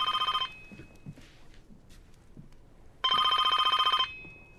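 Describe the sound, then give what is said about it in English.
A landline telephone rings loudly in two bursts of rapid, trilling bell tone, the second a full second long, with a quiet pause of faint background noise between them. “And then a landline's going off, which is not something that happened in 2006.”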